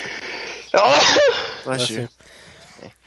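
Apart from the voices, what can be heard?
sneeze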